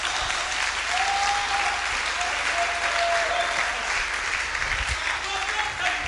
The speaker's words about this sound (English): I told you, give the Lord a mighty clap of.